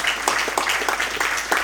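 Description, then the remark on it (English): A crowd at a church service applauds a woman, many hands clapping in a dense, steady wash of bright, crackling claps that stays fairly loud throughout the short burst. “You guys can give her a round of applause.”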